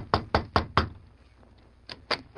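The Lone Ranger knocks on a wooden room door off a hallway: four quick knocks in a steady rhythm, then a pause and two more knocks, fairly loud with no voices.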